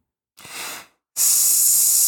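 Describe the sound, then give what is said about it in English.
A person imitates a snake with two hisses: a short, softer breathy hiss, a brief pause, then a longer, louder and sharper sustained hiss that continues to the end. “He's turning into a snake in front of me here.”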